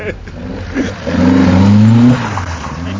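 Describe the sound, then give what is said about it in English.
A Mark II Escort rally car engine revs up hard, its pitch climbing and holding loud for about a second before easing off, with some background noise around it. “It's a Mark II Escort, so the passenger windows are there to look out when you're driving forward.”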